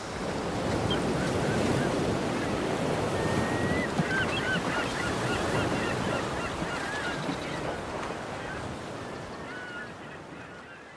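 Ocean waves wash steadily onto the shore in a continuous broad roar, with scattered goose-like honks and calls from birds heard faintly above the surf throughout.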